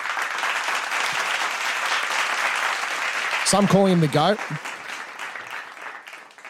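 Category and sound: crowd, applause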